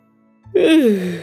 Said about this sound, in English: She yawned again.